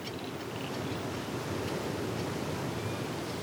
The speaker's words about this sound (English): Can you hear the waves crashing against the rocks at the bottom of the cliff?